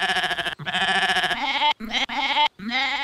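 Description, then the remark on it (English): A goat named Wilbur bleats loudly in several quavering, nasal cries, with brief gaps between them, and no one speaks. “Hey, you think that goat over there plays an instrument?”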